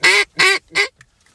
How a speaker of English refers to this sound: One of these flocks is new, that little one. Oh, dude, that's a lot of ducks. They come in like those other ones.